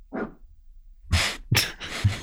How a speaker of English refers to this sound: Oh, he's hearing other dogs bark. And so he's joining in. There's a cacophony outside.